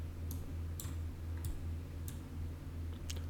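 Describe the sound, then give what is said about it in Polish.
Several sharp, light clicks of a computer mouse at irregular intervals while navigating a video website's home page, over a steady low electrical hum with no talking. “Tutaj mamy różne jakieś opcje, na przykład możemy sobie tutaj kliknąć tak.”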